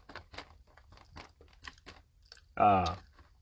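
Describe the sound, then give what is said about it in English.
Wet open-mouthed chewing of a fresh filled donut from a bakery section, with a run of quick smacking and crunching bursts, then a loud voice cuts in briefly at the end. “you want to chew with your mouth closed?”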